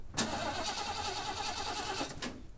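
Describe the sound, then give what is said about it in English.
A pickup truck's starter grinds through about two seconds of rapid, rhythmic, loud cranking, then cuts off without the engine ever catching. No voices. “With great pain in his legs, he stumbled back to his pickup truck. The truck wouldn't start.”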